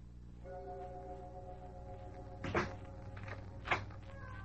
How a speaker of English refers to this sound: Closing door finishes a story.